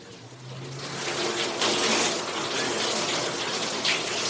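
Shower water runs in a steady, continuous, fairly loud hiss as someone takes a shower, with a low hum briefly underneath at the start and no voices.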